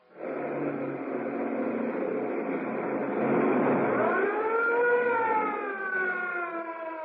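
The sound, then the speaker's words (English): A loud police siren wails continuously, its pitch sweeping upward and holding high, over a rough rush of speeding vehicle noise, with no voices: a police car chasing a fleeing sedan at breakneck speed through narrow streets around a waterfront. “Threading their way at breakneck speed through the narrow streets around the waterfront, the police car follows the fleeing sedan.”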